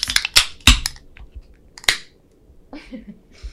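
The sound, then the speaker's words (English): Beer can tabs popping open as several people open their beers together on a count of three for a toast: several sharp, bright clicks in quick succession, then another crisp snap, each followed by a short fizzy crackle. No one speaks. “So let's start by popping our tabs here on our beer and a little cheers,”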